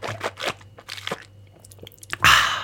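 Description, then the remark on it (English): Someone pauses to take a few sips of water, with soft wet gulps and clicks broken by crinkly handling noises, ending in a louder, rough crackling burst. No one speaks. “I'm going to take a quick pause to drink a little water.”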